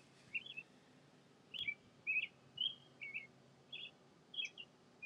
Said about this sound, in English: And the birds. Mostly just birds chirping.